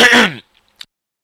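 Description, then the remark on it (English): A single loud, rough throat clearing, lasting under half a second, followed by a couple of faint clicks and then quiet. “Hold on, I gotta clear my throat because this is a special moment for me.”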